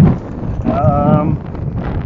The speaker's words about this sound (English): It's really windy here right now because I'm passing through a field.